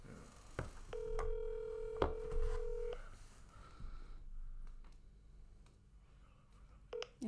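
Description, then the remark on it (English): A phone being dialed to call a guest: a steady electronic tone holds for about two seconds amid soft clicks and handling noise, then a quieter stretch before one more short beep near the end. “I will bring a guest in to help us out. Okay. If I can find the said guest's phone number.”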